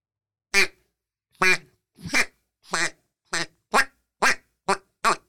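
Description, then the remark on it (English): A Whiskey and Whitetails bourbon barrel duck call, blown by saying the number 10 into it, produces a sequence of nine loud, nasal quacks in a steady, slightly quickening rhythm, with no talking. “This is me saying the number 10 in our whiskey and whitetails, bourbon barrel duck calls.”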